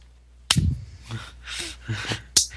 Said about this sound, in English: Ow. Slapped myself by mistake.